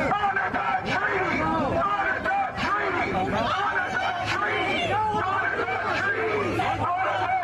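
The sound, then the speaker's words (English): A dense protest crowd outside the Department of the Interior building in America, demanding their way in, many voices shouting and talking over each other in a loud, continuous hubbub, with no single voice standing out. “And here is the crowd outside demanding their way in because they want to save the environment.”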